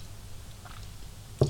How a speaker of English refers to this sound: Sorry, just taking a sip of my tea.